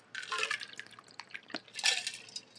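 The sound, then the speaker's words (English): A quiet sip of water: a few soft slurping and liquid sounds with small clicks over about two seconds, with no talking. “And I had to take that sip of water.”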